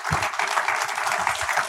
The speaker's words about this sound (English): Big round of applause for Miranda. Beautiful, beautiful film.